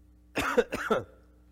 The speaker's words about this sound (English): my cough drop literally just ran out and now I'm coughing.